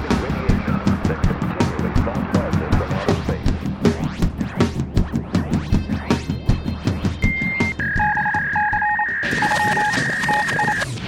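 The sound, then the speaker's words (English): A Geiger counter converting radioactivity into sound, revealing the presence of radioactive rain, crackles with rapid, irregular clicks in a dense, fairly loud stream; near the end, steady high electronic tones and short beeps join the clicking. “The instrument, a Geiger counter, is converting radioactivity into sounds we can hear.”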